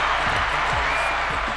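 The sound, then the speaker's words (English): A round of applause fills the whole moment, a loud, dense wash of many hands clapping together with no single claps standing out, steady from start to finish. “Can we get a round of applause for our guest real quick?”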